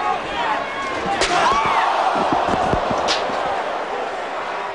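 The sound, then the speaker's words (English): Two sharp metallic steel chair shots to a wrestler crack out about two seconds apart over a loud, roaring arena crowd that keeps up a steady din throughout. “It's a brutal chair shot.”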